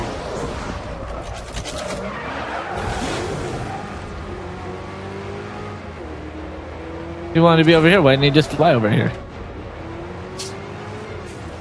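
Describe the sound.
Bruce Wayne's car in Batman: its engine drones in the background under people talking, then a loud, sharp tire screech with wavering pitch bursts out for about two seconds as the car skids.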